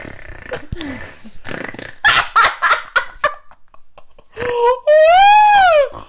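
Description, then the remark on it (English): A few quick, breathy snorts from a female pet dog arrive in a loud burst, followed by a drawn-out high whine or squeal, with people's voices heard around them. “She likes to snort.”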